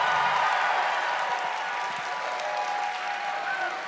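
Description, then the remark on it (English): Steady audience applause from fans of the Swensons restaurant, a dense wash of many hands clapping at once that holds at an even, fairly loud level for several seconds with no voices standing out. “By applause, who out there is someone who's into Swensons?”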